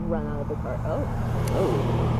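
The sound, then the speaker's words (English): A black Nissan's engine rumbles steadily as it approaches on the street, its low drone running the whole time while people talk over it. “There's a black Nissan coming our way, and something in me feels like they're going to come up to us and...”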